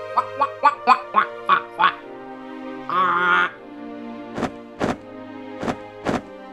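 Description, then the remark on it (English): A voice imitates an albatross honking: a quick run of about seven nasal honks, then a longer drawn-out honk, followed by several sharp, spaced squawks, all loud. “Oh, that's quite some honking.”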